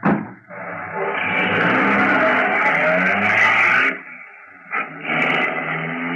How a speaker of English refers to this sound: Get into the cab and start it.